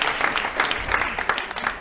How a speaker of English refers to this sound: A very well-deserved round of applause, I must add.